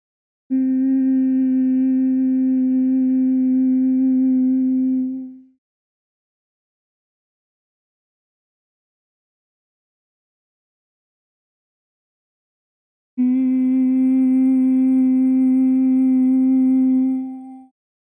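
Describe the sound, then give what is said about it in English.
Two long, steady humming bee breath exhales, each about five seconds, at a low constant pitch with rich overtones, separated by a long silent pause; a breathing exercise inhaling through the nose and humming slowly and smoothly on the exhale. No one speaks. “And with the exhale, we'll make the humming bee sound.”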